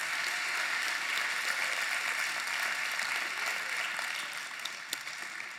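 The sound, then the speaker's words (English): An audience gives the Lord a hand clap after a prayer one morning, a steady dense patter of many hands for several seconds before tapering slightly, with no voices over it. “Let's give the Lord a hand clap this morning.”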